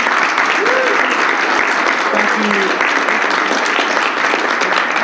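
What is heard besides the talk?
round of applause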